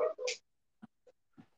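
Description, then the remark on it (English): A dog at a house gives two sharp, loud barks in quick succession as somebody walks by, followed by a few faint, brief sounds spaced apart in otherwise quiet surroundings. “Tom's dog's got some stories to share too”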